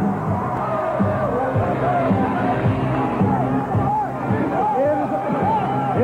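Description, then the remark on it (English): A capacity crowd at a World Wrestling Federation event roars and cheers on its feet for champion Hulk Hogan after his match against Tiger Chung Lee, a dense wash of voices with rising shouts and whoops swelling throughout, steady and loud for the whole stretch. “Hulk bringing this capacity crowd to its feet.”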